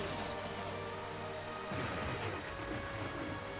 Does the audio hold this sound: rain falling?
yes